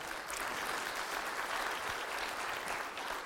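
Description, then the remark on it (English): A crowd applauds steadily, many hands clapping at once in a dense, even wash of sound that holds at the same level from start to finish, with no voices. “If one person claps, we all have to.”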